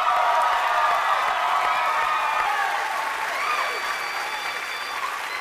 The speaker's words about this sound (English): You got a whole bunch of super fans that came down to cheer you on today, too.